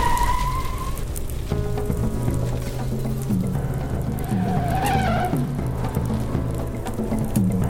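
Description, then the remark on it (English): A suspect's car roars and drives away at speed after hitting a firewall, tires squealing in a brief high-pitched skid over a steady, loud engine rumble, with no voices. “The suspect is suspect just hit a firewall and is driving away.”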